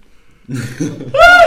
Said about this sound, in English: Let me yawn real quick.